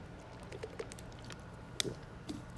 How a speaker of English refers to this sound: I have to pause and drink some water since my throat's going to dry up.